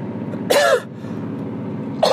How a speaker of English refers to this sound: Excuse me. I still got the cough. This fucking cough lasts forever. And it's a little bit in the chest too.